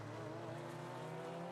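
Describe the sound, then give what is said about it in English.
Race car engines roar steadily at high revs, a sustained harmonic whine of a Corvette and a Porsche racing down a track, coming over the top of the hill that leads down to the final corner, called the roller coaster. Loud, with no voices. “Corvette versus Porsche coming down to the top of the hill that leads down at the final corner.”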